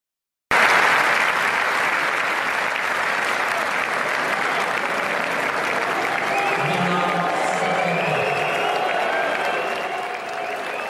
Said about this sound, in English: A crowd booed a Ukrainian tennis player at the French Open yesterday after she refused to shake her Belarusian opponent's hand.